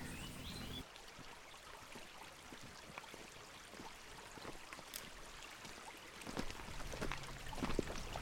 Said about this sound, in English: You can't predict. You look at this river, it could do anything.